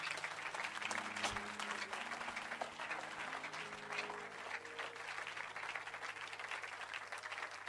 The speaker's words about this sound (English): This is the end of my message. Keep on clapping.